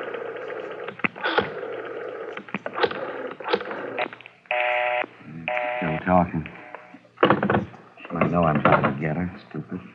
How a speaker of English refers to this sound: All right, go ahead. Dial 9 to get outside